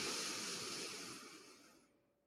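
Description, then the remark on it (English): A slow, deep breath drawn in through the mouth during a guided breathing exercise, a soft airy rush that stays steady for about two seconds and then tapers away. It's quiet, with no talking. “Breathing in.”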